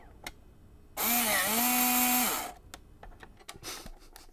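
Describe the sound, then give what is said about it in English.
A Zip disk drive ejects a disk with a loud, whirring motorized buzz lasting about a second and a half, its pitch dipping and rising, followed by a few small clicks and a brief mechanical rattle. “I've read all that, and I'm going to go eject my zip disk, so that's what this sounds like.”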